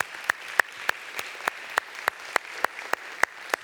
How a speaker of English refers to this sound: I'd love you just to give her a round of applause, just to say thank you.